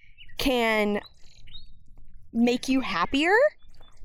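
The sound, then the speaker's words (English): A person talks outdoors while a few faint, brief bird chirps sound in the background, mostly in the pauses between phrases. “Do you hear these birds? I hope you can hear these birds out here.”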